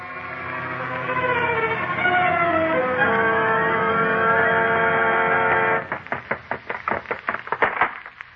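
A heavy chain clangs and clatters on the cellar stairs in a quick, uneven run of sharp metallic clanks, after a long, loud, droning wail of overlapping tones. No voices.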